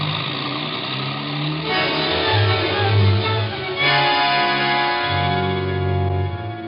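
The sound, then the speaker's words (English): A taxi cab's engine roars and revs continuously, shifting pitch as it accelerates hard through city traffic and red lights toward the Wrigley building on Michigan Avenue, with a dense wash of traffic-like noise around it and no talking. “The red and the traffic lights didn't mean a thing, but it still took us 3 minutes to get to the Wrigley building.”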